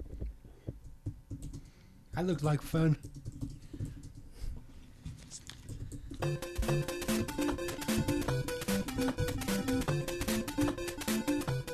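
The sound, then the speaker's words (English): Rapid, steady clicking of keys on a computer keyboard fills the second half, fairly loud, after a brief stretch of someone talking. “Keep typing. Keep typing. Keep typing.”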